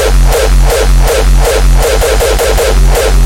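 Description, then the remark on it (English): Harsh, digitally clipped audio, made by hard clipping of the waveform pushed to the extremes, crackles at full loudness throughout, a thick buzzing wall of distortion pulsing with a steady, regular beat, and no voices present. “This hard clipping of the waveform, and if pushed to the extremes, you may have accidentally encountered this, creating a digitally distorted sound.”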